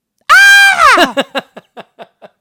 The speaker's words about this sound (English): Oh, this song, is it this one? Has a fucking great scream at the end.